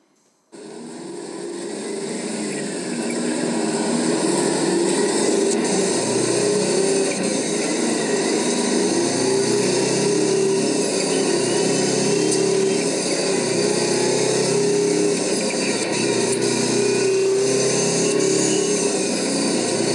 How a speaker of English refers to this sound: There's an 8V92 liftoff. So if you don't like the sound of a screaming Detroit, turn the volume down. If you're an intoxicated junkie like myself, turn the volume up.